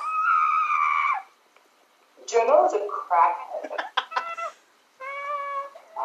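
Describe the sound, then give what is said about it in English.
A dog lets out shrill, high-pitched screeching cries: a long drawn-out wail, then a choppy cluster of squeals, then another sustained shriek, with a person briefly speaking. “Your dog sounds really lovely.”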